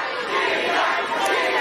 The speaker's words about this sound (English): And then they start chanting for Sheila Jackson Lee, who is a complete nut.